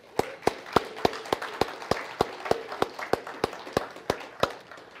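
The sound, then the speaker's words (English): Audience applause for moms, built from a steady run of sharp, crisp claps, roughly four per second, ringing out clearly above a soft, continuous noisy wash for the whole five seconds. “But let's have a round of applause for moms.”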